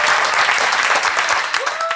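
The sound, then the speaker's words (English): A crowd claps loudly and continuously, a dense wash of applause that stays steady throughout, with a brief whistle-like tone rising near the end. “Could we give him another huge round of applause?”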